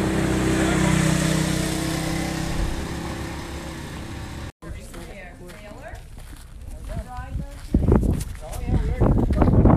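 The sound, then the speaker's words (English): A small utility vehicle (a gator), used by lobstermen to get down to their boats on Fish Beach, runs steadily, a rough, droning rumble that cuts off midway. Indistinct voices and scattered knocking sounds follow. “Some use gators to get down.”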